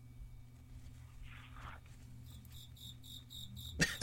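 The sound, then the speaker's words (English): A cricket chirps in a steady series of short, high-pitched trills, close and clear over a low background hum, ending with a brief rustling bump. “See, that cricket's backing me up.”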